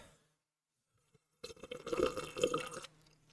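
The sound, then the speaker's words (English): A wet slurping sip of a drink lasts about a second and a half, loud and liquid, after a short silence, with no talking. “Nice long sip before you start.”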